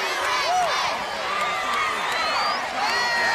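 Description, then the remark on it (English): A wrestling crowd of about 10,000 fans chants "USA" in unison at a Matt Borne match, a loud, dense mass of many voices with occasional rising whoops and shouts cutting through, sustained without pause. “And listen to this crowd chant, USA.”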